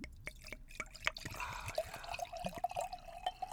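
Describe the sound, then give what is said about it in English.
Sauvignon Blanc wine glugs and splashes steadily into a glass, the gurgling pitch creeping upward as it fills over a few seconds, with no voices. “But when I pour it in the glass, we can see exactly what I'm dealing with here.”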